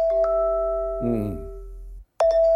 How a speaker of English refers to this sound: No, I mean one of those really obnoxious alarms that you might hear a few rows back on the plane. Turn that off.